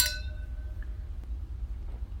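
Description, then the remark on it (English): A single bright clink of wine glasses in a toast rings out at the start and fades over a brief ringing tail, followed by a quiet low hum with no voices. “Considering how often we drink a California Cab or something from the coast, and we didn't this time. Nope, because mine is also not from the U.S. But anyways, cheers.”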